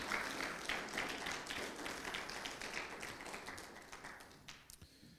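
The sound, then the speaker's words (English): A crowd applauds steadily in praise of God, many hands clapping together in a dense, sustained wash of sound that gradually thins out toward the end, with no one speaking. “Come on, give God a hand clap of praise.”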